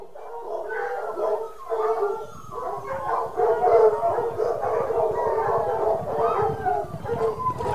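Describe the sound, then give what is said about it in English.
A hunting pack of hounds on the scent during a hunt bays and howls together in overlapping, wavering cries, a steady loud chorus of mid-pitched voices with occasional yips running throughout. “The pack has the scent, my lord.”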